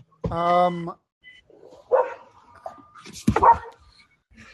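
A dog being walked by a woman in a towel barks and yelps, starting with a drawn-out, tonal bark followed by a few shorter, rougher barks spaced out over a few seconds.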